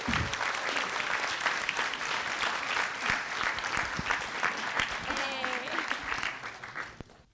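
An audience at the Roxy Theater breaks into a sustained round of applause, dense clapping holding steady for several seconds with a few scattered cheers before tapering off near the end.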